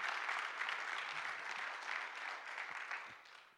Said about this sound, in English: would you give them a strong hand of applause this morning?